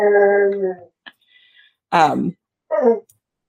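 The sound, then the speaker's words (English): A male pet dog howls in the background: one long, steady howl, then two shorter, wavering cries with sliding pitch, separated by brief pauses. “Sorry, my dog is back there. I don't know what he is doing.”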